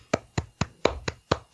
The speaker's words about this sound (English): I'm applauding.